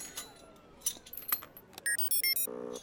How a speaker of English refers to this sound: With your permission, Your Highness, I will attempt to pick the lock.